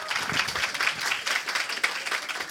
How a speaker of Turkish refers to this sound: Yanında da Brek var. Brek için de bir alkış alalım.